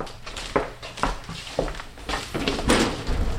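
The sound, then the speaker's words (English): A wooden cabinet drawer in a Harvard insect specimen collection room slides open with a series of scraping, knocking clunks, several sharp thumps over a few seconds, fairly loud against a faint room hum. “Farrell walks to one of the cabinets and pulls open a drawer.”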